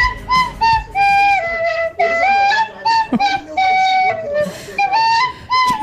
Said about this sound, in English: is what I was playing on the tin whistle. It's absolutely not. They also want me to play it again.